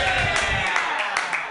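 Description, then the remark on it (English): An audience applauds in a steady, dense patter of clapping that holds evenly throughout, with a murmur of voices mixed in underneath. “Last time I got applause like that, I was telling a heckler to shut the fuck up.”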